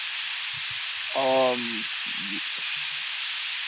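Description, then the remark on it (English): Water gushes from a water main broken in a front yard in a steady, unbroken rushing hiss that fills the whole clip, with a brief voice-like sound and a few low thumps partway through. “Yeah, I hit a water main in my front yard.”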